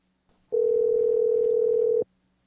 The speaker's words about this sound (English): The phone got so excited by the mention of urethra that it cut out.